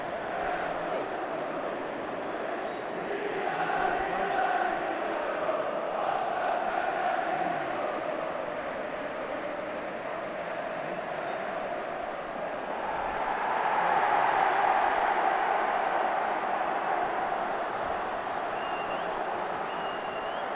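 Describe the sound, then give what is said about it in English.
A large stadium crowd at a football match involving Newcastle roars steadily during a VAR offside check, then swells into a louder cheer about two-thirds of the way through as the goal is ruled offside, before settling back to a constant din. “Yeah, that cheer from the top. You can hear it's offside.”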